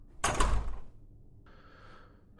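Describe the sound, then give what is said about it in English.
A door shuts with a solid thud as a man walks out carrying wet clothes wrapped in a towel to do laundry, followed by a quieter sustained rattle or hum lingering for a moment before another bump at the end. “wrapped all his wet clothes in his towel and walked out the door.”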